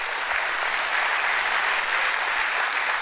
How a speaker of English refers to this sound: Give the good Lord a hand clap for the word today already.